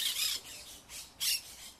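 A monk parakeet gives three harsh, raspy squawks in quick succession, loud, with brief gaps between the screechy bursts and no voices present.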